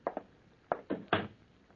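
Several firm knocks on a wooden door, arriving in uneven pairs and singles over a couple of seconds, moderately loud against a quiet background.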